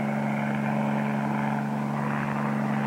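A steady, loud drone of the engine and rotor of helicopter 38 Bravo in flight, a continuous low hum with a dense roar above it, holding constant without pause or voices.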